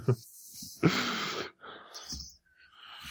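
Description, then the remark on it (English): A voice imitates the heavy, labored breathing of a wounded dragon: a few long, raspy, wheezing breaths in close succession, loud, with a brief grunt at the start and no talking. “Well, now, guys, dragon is breathing heavily.”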